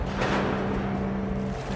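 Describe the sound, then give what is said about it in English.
Steady low rumble of a large container ship's engine close by at the port of Felixstowe in southeast England, with a constant droning hum and broad wash of background noise, continuous and fairly loud without any voices. “Now, I'm finally close up with one of these ships.”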